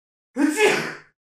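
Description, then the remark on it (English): A single loud sneeze lasting under a second, opening with a sharp voiced intake that bursts into a breathy, hissing release and fades out quickly, with nothing else sounding. “I gotta sneeze.”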